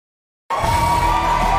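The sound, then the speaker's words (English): After a brief silence, stock exchange closing bells break into a steady, high-pitched ringing that holds loudly throughout, over a low murmur of crowd noise and scattered cheers. “You just heard the bells, but we're just getting started.”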